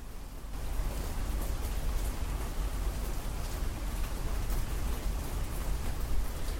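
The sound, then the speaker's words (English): Steady rain falls outside onto a porch, a dense, even patter of drops hitting a surface, with a low rumbling undertone and no voices, continuous from start to finish. “Listen to the rain.”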